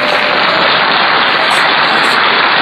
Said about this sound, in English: and I got to give a big applause. Let's applaud the Raiders!